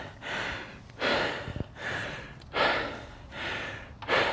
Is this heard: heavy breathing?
yes